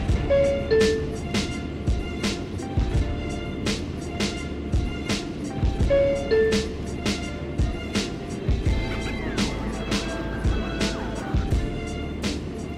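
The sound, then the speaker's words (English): Steady low rumble of a car's interior while driving home from Madison Square Garden, with a constant engine and road drone and frequent small clicks and thumps from bumps, continuing without a break and with no talking. “we're in the car driving safely home from Madison Square Garden”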